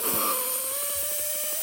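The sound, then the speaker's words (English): A man blows up a balloon trying to pop it, air sputtering out the sides of his mouth and the balloon's neck: a steady thin squeal riding over a rapid, raspy buzzing flutter that runs for about a second and a half. “Have you ever seen somebody, like, so much, why is so much air escaping the balloon,”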